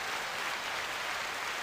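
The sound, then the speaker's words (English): Hands clapping in a dense, steady patter for under two seconds, the claps blurring together into a continuous wash at a low, even level, with no voices. “Clapping.”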